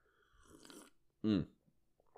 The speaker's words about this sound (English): Good little sip of coffee. Which is, I don't know if you're supposed to drink that when you're sick, but I just need coffee.